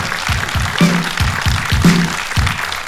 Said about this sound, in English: For now, please give him a round of applause for a wonderful hour chat.